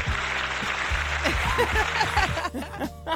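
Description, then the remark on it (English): A studio audience claps steadily and densely for a few seconds, with scattered voices and laughter rising over the applause before it thins out near the end. “The rest of y'all clap. There we go.”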